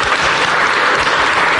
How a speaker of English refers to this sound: let's give a big round of applause to David Stern